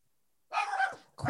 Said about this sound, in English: These dogs will be the death of me.